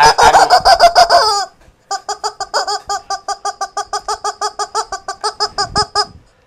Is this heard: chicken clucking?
yes